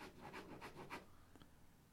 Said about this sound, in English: I've done this on paper today, so you might hear me scribbling things out as I read them out.